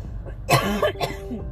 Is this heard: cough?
yes